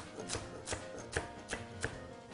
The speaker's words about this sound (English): I am going to add 2 stalks of celery. This celery, I'm cutting into thirds, and then I'm going to dice it into maybe 1/4-inch chunks.